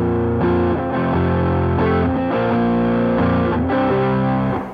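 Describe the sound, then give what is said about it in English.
Loud electric guitar through an overdrive pedal doubled with a Death by Audio Echo Dream echo pedal, playing thick sustained chords that change every half second or so, with a smeared, repeating tail and no voices. “like I said, I was just playing this first overdrive, but then I like to double it up with this Echo Dream.”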